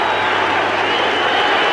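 A baseball stadium crowd in Arlington, on its feet with two outs in the ninth inning as Kenny Rogers nears a perfect game, roars and cheers steadily, a loud, dense wash of voices that holds at a constant level with no break throughout.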